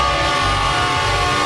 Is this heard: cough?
no